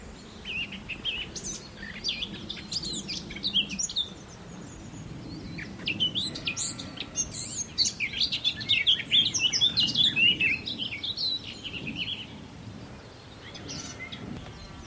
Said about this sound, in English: This is a garden warbler.